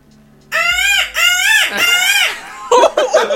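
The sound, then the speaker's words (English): A person loudly imitates a peacock's call: three long, wailing, nasal cries in quick succession, followed by a few shorter, choppy squawks. “He knows the peacock.”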